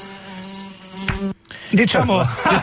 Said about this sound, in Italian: No, sto aspettando le mosche. Certo, aspettando le mosche. Sì, quando arriva la mosca è il vero climax. Eccola.